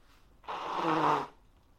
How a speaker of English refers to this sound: it's maybe I've like got this nervous association with doing the podcast and having a runny nose now, because it seems that every time I do this, I sound so much more nasal than the previous time, and I'm going to have to blow my nose now.